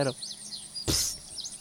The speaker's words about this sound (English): Oh, I just love my job. So peaceful. So quiet. The beauty of nature. Look at the birds over there chirping.